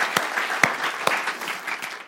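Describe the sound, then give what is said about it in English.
An audience applauds themselves, a dense wash of clapping with a few sharper, louder claps standing out every half second or so. It stays steady and fairly strong throughout, with no voices. “So I wonder if you could all give yourself a round of applause and just, you know, a great big thing.”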